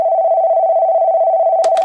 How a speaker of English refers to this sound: The phone clicked into its cradle, and almost as soon as it did, it rang.